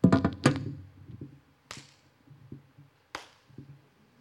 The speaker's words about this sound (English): So I'm pacing, I'm getting all nervous. And then I'm, like, doing the old, you know, the classic praise clap where you're just like...